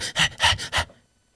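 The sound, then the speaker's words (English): A voice imitates the heavy panting of a pit bull running up from behind, four quick, raspy breaths in a steady rhythm, fairly loud, before falling silent. “I hear the breathing coming.”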